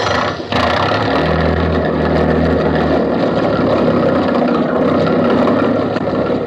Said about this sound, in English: I'll get the motor started. We'll be off in a jiffy.